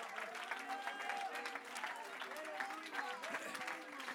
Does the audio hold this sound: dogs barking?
no